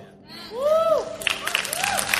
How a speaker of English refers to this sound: Yeah, I think they're clapping at his performance.